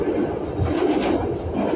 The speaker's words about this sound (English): going to get loud here with the cars going underground, and I apologize.